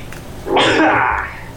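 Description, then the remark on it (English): A single loud sneeze bursts out with a sharp breathy blast that tapers off over about a second, with no talking around it. “I've been sneezing a lot for the last week or so that's something.”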